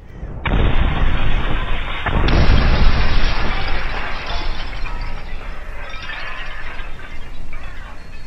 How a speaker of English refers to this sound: And each cask split upon impact, shattering as it hit the ground and spraying the nearby greenskins in the foul, flammable liquor.